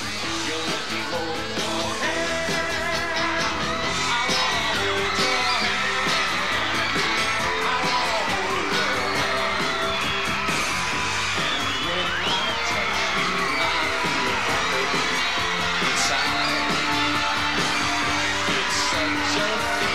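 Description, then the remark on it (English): An audience cheers, yells and whoops over an Italian man singing a song, a dense, steady wall of crowd noise and music that stays loud for the whole stretch. “he ends up winning the crowd over.”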